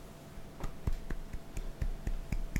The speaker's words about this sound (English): One small applause from someone way off in the distance. That's our sole audience member.